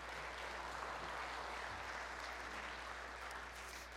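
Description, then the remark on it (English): A crowd gives Him (God) another hand clap, clapping steadily for four seconds, a dense, even wash of many hands with no voices breaking through and no pause in the applause. “Give Him another hand clap.”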